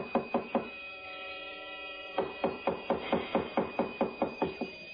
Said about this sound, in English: Oh, now, please, don't batter down the door.